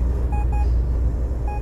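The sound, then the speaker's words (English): Short electronic beeps from a long-haul truck's motion detector sound at regular intervals, three evenly spaced tones, over a loud steady rumble of the large truck's engine; the truck is hauling dog food from Joplin, Missouri to Atlanta, Georgia. “Now, that beeping sound is a motion detector”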